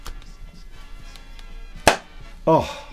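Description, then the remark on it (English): A free spectacle case from Vision Express snapping shut, a sharp loud click followed half a second later by a louder, slightly ringing snap, over a faint low background hum. “you had broken your spectacle case, so I wandered into Vision Express and got you a free one”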